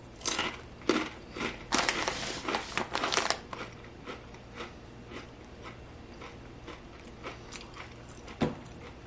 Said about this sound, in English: It's a corn kind of rolled up tortilla thing. It is so crunchy.